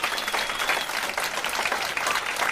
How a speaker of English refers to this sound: Yahoo! A round of applause for Mike. Thank you, Mike.